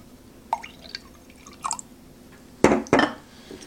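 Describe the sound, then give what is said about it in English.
Lime juice from a citrus squeezer is poured into a glass in short bursts: a few light drips and trickles with a faint ringing tone, then two louder splashes near the end. No one speaks. “And then I'll pour it in the glass so you can see.”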